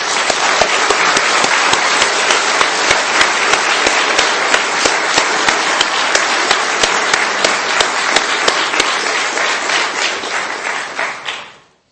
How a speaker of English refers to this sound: And I think at this time we ought to applaud and give the Lord a thank offering.